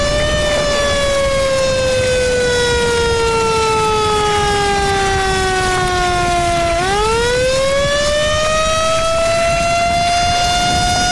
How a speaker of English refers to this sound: Oh, those ambulances, man.